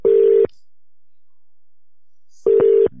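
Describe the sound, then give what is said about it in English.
Telephone tones sound as a number is called: two steady, mid-pitched electronic beeps, each about half a second long, separated by roughly two seconds of silence. “Oh, no, I'm calling them back.”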